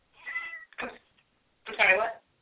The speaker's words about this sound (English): I hear the cats in the background.